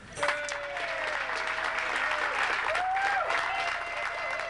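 Sustained applause from a sizable audience, steady and dense for several seconds, with a few scattered cheers and whoops rising above the clapping.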